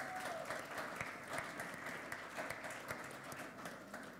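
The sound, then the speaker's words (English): A round of applause from a crowd at Outlook church on the night before Christmas, for the team who put the evening together: steady dense clapping that holds at an even level for the whole stretch, with no voices standing out above it. “Yeah, let's have a round of applause.”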